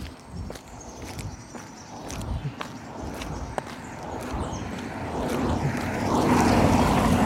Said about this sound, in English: Here comes another car.